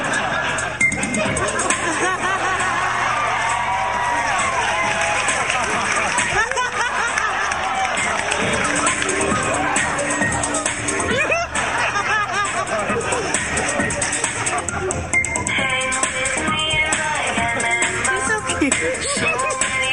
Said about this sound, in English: This is actually live feed from the actual panel. So, of course, you'll hear people laughing and cheering and clapping along.